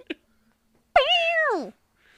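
A startled female cat, just woken up and not hurt, lets out a single loud, drawn-out meow that rises sharply then slides downward, preceded by a brief faint click and followed by quiet.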